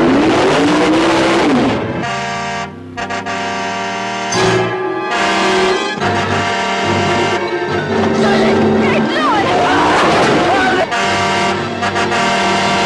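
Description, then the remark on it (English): A car engine revs loudly, its pitch climbing and dropping in repeated surges, with sustained horn-like blares cutting in over the roar; the driverless car from the film The Car. “Now it returns as The Car.”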